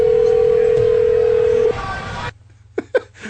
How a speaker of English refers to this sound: Oh, what's this? It's ringing. Phone is ringing. Suspense.